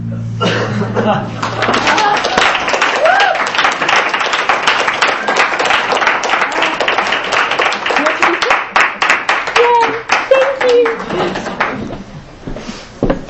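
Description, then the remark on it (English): A crowd applauds steadily for over ten seconds after an author's reading, dense overlapping claps with a few scattered voices and cheers mixed in before the clapping thins out at the end. “Another round of applause for that.”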